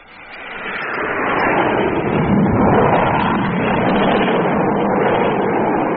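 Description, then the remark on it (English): Spaceship number two roars fast and low overhead: a dense, rushing whoosh swells up within a second or so, then holds loud and steady to the end, with no voices. “That's number two approaching already.”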